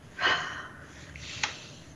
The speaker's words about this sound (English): Good. Keep breathing. Breathe this out. Go. Good. Good.